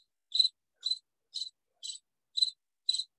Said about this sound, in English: Yeah, that's what you're hearing. You're hearing crickets.